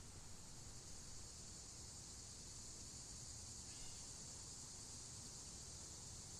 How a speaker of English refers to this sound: I'm listening to the cicadas